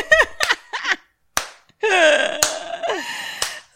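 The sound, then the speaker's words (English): A slow clap: four sharp, loud hand claps spaced about a second apart, with drawn-out vocal sounds and exclamations from a voice filling the gaps between them. “Just fucking slow clap.”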